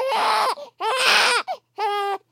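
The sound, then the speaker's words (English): A newborn baby boy cries in a recording booth in three loud wailing bursts with short gasping breaks between them, the cries harsh and strained with a rising and falling pitch. “And I got some really horrible baby crying sounds.”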